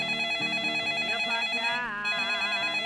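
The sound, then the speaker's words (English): A telephone rings steadily and fairly loudly for a few seconds on a sunny morning in a home in Florida, its bright, buzzing tone sustained with a slight warble partway through, and no one speaks. “Then the phone rang.”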